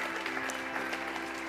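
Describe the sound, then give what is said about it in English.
A church audience applauds together, giving the Lord a hand clap for the Accelerate campaign, a dense, steady wash of many hands clapping at once, with sharp individual claps popping through the even, moderately loud roar for the whole moment. “come on, let's give the Lord one more big hand clap for that, amen.”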